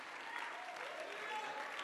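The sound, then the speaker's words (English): An audience claps steadily, a dense continuous patter of many hands with no clear individual beats, sustained at an even level throughout with faint voices mixed underneath. “Oh, clap your hands. Clap your hands.”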